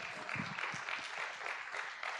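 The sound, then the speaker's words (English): A crowd at a sermon breaks into steady applause for the Lord, a dense wash of many hands clapping at an even, fairly loud level with no voices standing out. “And if you believe it, come on, give the Lord a good round of applause.”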